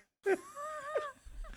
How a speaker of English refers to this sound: The corpse just keeps breathing so loud.